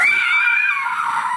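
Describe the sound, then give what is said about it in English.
A single shrill, sustained scream from a monster called a Skoga as it looks up, loud, holding a piercing pitch for over a second before sliding slightly downward, with no talking. “The Skoga looks up and screams.”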